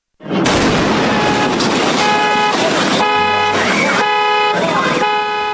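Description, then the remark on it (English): A loud, sudden fireworks explosion that damaged homes and flipped over a nearby car opens with a broad roar, then several triggered car alarms start blaring in steady, overlapping tones, with noisy bursts continuing throughout. “So let's play a little clip of that explosion.”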